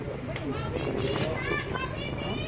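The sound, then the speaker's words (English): Busy swimming pool ambience: a steady, loud wash of crowd noise, with many children's high-pitched shouts and calls overlapping continuously throughout. “Just arrived at the pool.”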